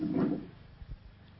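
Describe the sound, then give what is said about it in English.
Two chairs are shifted into position by ushers: a short scraping drag, then a couple of soft, dull thumps as they settle. The sounds are fairly quiet and no one is talking. “Get me two chairs. Just those two chairs.”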